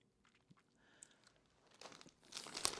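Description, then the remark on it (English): A plastic bag of taco truck jelly beans crinkles and rustles, quiet at first with scattered small crackles, then growing louder and denser toward the end with sharp crisp crunches. “This is the taco truck jelly bean bag.”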